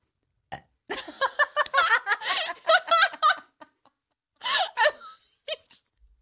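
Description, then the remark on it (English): A long, drawn-out, deliberate burp done on command rumbles loudly for a couple of seconds, followed by a shorter second belch and faint laughter-like sounds. “The one thing I can do for you is a burp.”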